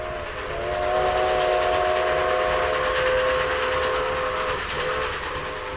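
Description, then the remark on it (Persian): A passenger train rumbles closer, its steady clatter swelling up before a long, sustained horn blast sounds over the noise and then fades off, with no voices present. “ریزعلی می‌دانست که تا چند دقیقه دیگر قطار مسافربری به آنجا خواهد رسید.”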